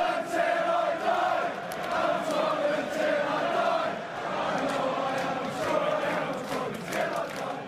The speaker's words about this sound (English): The crowd began to sing.